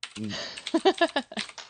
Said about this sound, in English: I just wanna play it like a keyboard. Play it. Yeah. Okay. It is a keyboard, is it not?